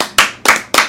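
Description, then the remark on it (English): Three loud, sharp hand claps in a steady, even rhythm, each a bright crack with a quick decay, and no talking between them. “Clap it up.”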